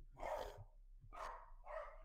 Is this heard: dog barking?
yes